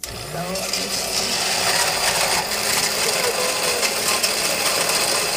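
A flash blender runs steadily for several seconds, a loud, dense whirring roar with a gritty mechanical rattle, starting abruptly and holding constant with no voices over it.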